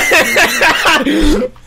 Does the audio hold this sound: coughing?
yes